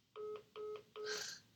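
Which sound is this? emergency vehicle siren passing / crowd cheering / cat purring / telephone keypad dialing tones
telephone keypad dialing tones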